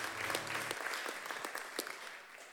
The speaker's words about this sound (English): Applaud him.